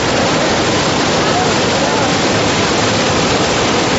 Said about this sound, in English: That is the River Jordan at a time of flooding. It's not quite sort of gone over the banks fully in this particular stretch. But you can see the force of that river. It's not something that I would certainly attempt to cross.